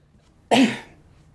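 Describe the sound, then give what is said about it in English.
A single sharp cough, loud and abrupt with a quick breathy tail fading in under half a second, surrounded by quiet. “Sorry, that was an inopportune moment to cough.”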